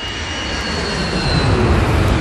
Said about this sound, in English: Two hours and 45 minutes into the flight, the plane is cruising at an altitude of 11,300 meters and on a pre-programmed flight path heading towards Cali's airport.